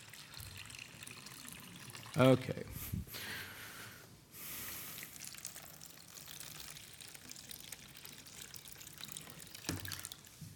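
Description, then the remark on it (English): Liquid is poured into containers in a couple of short, splashy streams, followed by a steady low trickle. The pouring is moderately loud, and a voice speaks briefly near the start. “Now, I'm going to pour some in the other ones too, because I'll just say, look, I would like to be a high achiever.”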